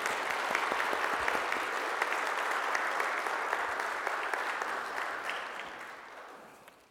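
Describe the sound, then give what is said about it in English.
An audience claps for a choir, a dense, steady patter of many hands that holds strong for several seconds before thinning and fading out at the end. “And it's okay to clap, and so I just want to thank them for that music.”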